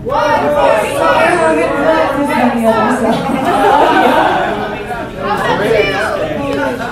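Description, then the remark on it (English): A large concert crowd chants "One more song, one more song" together for an encore, a loud, dense mass of voices that holds steady, dips briefly, then swells back up. “The crowd chanting, "One more song, one more song."”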